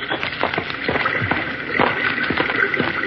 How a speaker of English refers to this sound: Oh, I think I hear running water. Yes, you're right.